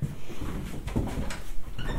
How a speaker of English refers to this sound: Just going through another wooden door with a great creak, you can hear that. This is a storage room.